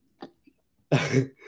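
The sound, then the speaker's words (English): A short intake of breath, then one loud, explosive sneeze with a harsh, breathy burst and a voiced edge, trailing off into a softer rush of air. “Dude, mute yourself next time you bless sneeze.”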